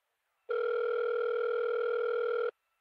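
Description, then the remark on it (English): A single steady two-second telephone ring tone heard over the line, fairly loud and even, with silence before and after and no one talking. “It's ringing.”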